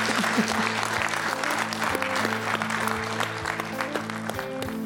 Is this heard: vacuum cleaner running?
no